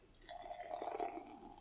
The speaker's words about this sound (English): You could open that can. Oh, my top! Nice. And the pour.